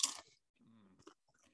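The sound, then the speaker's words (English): A Barnana spicy mango salsa kettle-style chip gives one loud, sharp crunch, followed by softer, irregular chewing with a few faint crackles as it is eaten. No one speaks. “So let me give another chip.”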